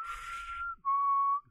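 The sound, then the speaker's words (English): Someone whistles Gizmo's tune, a short two-note tune: a breathy, slightly wavering first note, a brief pause, then a clear, steady higher-pitched second note held for about half a second. “But so Galligan, he finds out that Gizmo is in the building because this messenger guy, he comes whistling Gizmo's tune, you know, the.”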